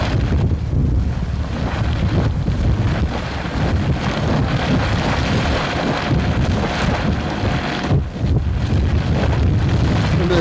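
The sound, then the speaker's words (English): A geyser roars steadily as liquid water, not steam, shoots upward, a loud, continuous rushing hiss that holds nearly unbroken for about ten seconds, with wind buffeting the microphone. “Steam? Oh no, it's liquid. Shooting up.”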